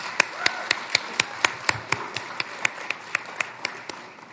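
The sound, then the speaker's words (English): Audience applause at a Department of the Interior summit, for Secretary Holland and the Interior team: a steady wash of clapping with sharp, evenly spaced claps standing out about four times a second, holding a regular rhythm throughout with no voices. “Let's give them a loud, warm applause.”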